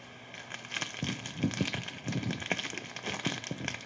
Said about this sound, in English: That's the sound of me opening a lollipop. No, it's not. It's a condom.